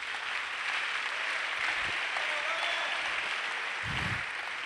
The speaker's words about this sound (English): Wow. The clapping is free. It's not, you don't pay. It's free.